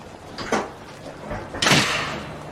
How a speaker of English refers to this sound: just smashed the door. That's not acceptable. He's not doing that to me, you know. He does not smash my door.